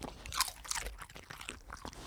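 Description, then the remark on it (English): The pet Mabel chews crunchy food, smoked salmon, right up against the microphone, a quick run of crisp crunches and wet bites with no talking. “I want everyone to hear how good you sound when you eat crunchy food.”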